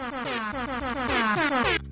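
Loud, blaring air horn blasts play a pop melody, with harsh buzzy tones stepping between pitches in quick rhythmic notes and a brief gap near the end.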